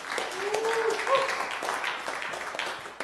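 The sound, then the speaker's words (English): An audience claps their hands for the praise and worship team at a Sunday service, a dense, steady burst of applause lasting a few seconds, with a brief raised voice or cheer rising above the clapping. “Hey, let's give the praise and worship team a hand clap of praise as well.”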